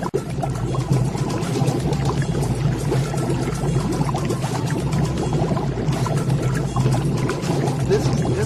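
A video game sound effect of water boiling on the oven in the restaurant game Restaurante Teddy Spaghetti: a dense continuous churn of small pops and gurgles at a steady rolling boil, loud for the whole stretch, with no one speaking.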